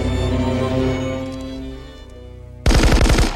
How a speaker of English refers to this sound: They walk out and there's a pause and we do not see what happens. And we cut back to John hearing the gunfire.